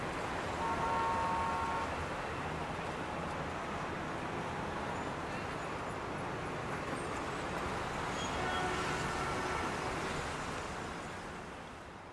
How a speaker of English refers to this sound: Okay, so the sounds of the mall are gone away. I can kind of hear traffic in the distance.